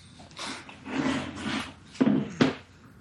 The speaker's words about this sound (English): He just fell off of his chair.